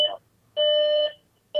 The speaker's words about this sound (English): Oh my gosh, the hotel alarm just went off.